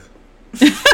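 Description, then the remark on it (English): Two short, throaty burps, loud and abrupt, the second following quickly after the first, with near silence beforehand and no talking. “Some burp ASMR.”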